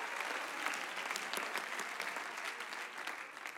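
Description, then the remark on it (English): A crowd claps steadily for several seconds in response to a call to clap, a dense, even patter of many hands with no clear rhythm, moderately loud and continuous, with no voices standing out. “Oh, somebody clap your hands if there's some expectation in your spirit today that my God is able to do the impossible.”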